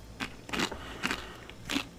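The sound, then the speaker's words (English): Someone crunches on a crunchy snack, with four sharp, crackly bites spaced irregularly over about two seconds, fairly quiet, with no talking. “No, I can't stop eating it.”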